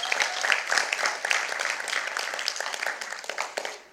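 A crowd applauds a family with dense, steady clapping that stays fairly even in loudness across the whole stretch, then fades slightly at the end. No voices stand out.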